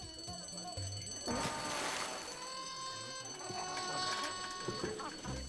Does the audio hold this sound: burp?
no